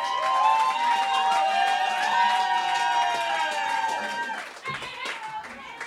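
An audience claps and cheers steadily as two people are welcomed, with high whoops and shouts over dense applause that stays loud for several seconds before thinning out toward the end.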